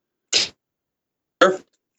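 Two short, harsh coughs about a second apart, interrupting a conversation about football. They are loud and breathy against silence, with no talking around them.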